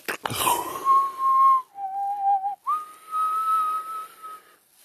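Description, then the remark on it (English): A person whistles a squawk-like call: a short breathy burst, then a steady tone that dips lower, breaks, and rises again. It is fairly loud, and there is no talking. “I suck at whistling, I'm sorry.”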